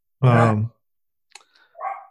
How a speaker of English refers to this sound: Oh, wait, is that your dog that's barking? Yeah, sorry about that. I thought it was my dog. I'm thinking, oh, man, I got to go walk my dog. He sounds just like mine. Well, it sounds like he's telling us to wrap it up.